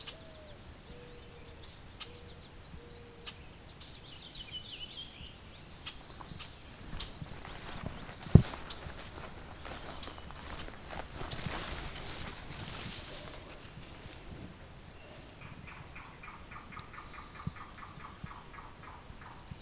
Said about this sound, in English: I've got a yellow-billed cuckoo.